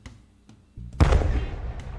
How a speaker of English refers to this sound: It explodes. Do I blow up his fridge? It's actually just a little small explosion. But do I blow up his fridge? How are we defining small? Like, not that much gunpowder can fit into this pen.